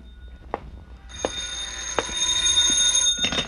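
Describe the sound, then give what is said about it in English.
A telephone rings: a bright, high-pitched ringing tone sets in after a few soft clicks and holds steadily for about two seconds before breaking into a choppier burst. No one speaks. “A sigh that came from me, the phone ringing that came from the phone.”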